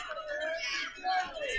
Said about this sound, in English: And … not giving up, though. Thunder Rosa still holding on to that left leg. Oh, you can hear … screaming.